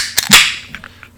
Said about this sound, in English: What we'll do here first is open a can of our AP 1001.